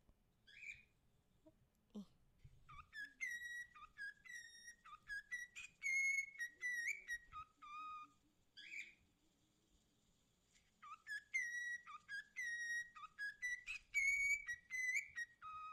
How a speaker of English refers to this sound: Yeah, so I listened to that bird. He's got a little piece of lettuce on his head. It's cute. It looks like a hat. I was literally like, I know that tune. I don't know what it's from.